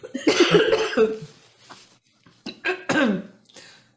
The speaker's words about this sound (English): Well, I have to say that LDN doesn't help when you're choking on a glass of water.